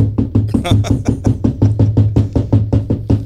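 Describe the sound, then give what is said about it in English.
Rapid, insistent knocking on a front door, about fifteen loud, evenly spaced thuds in a steady rhythm with no pause and no voices. “And I go to the front door, and I open it, and it's one of the secretaries who was living on campus at the time.”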